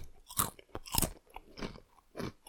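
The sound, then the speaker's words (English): Close, loud crunching of a regular thin-cut barbecue potato chip without ripples or ridges, bitten up on the mic: a sharp first bite followed by several crisp chewing crunches in an uneven rhythm, with no talking. “I'll take a big bite up on the mic and see what we got going on if this little chip carries a big punch.”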